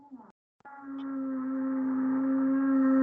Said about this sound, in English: I'm sorry if you can hear that. Our drill just started as soon as I start. Somebody's just decided to start drilling. It's really killer. Oh dear. So I'll try and talk over that.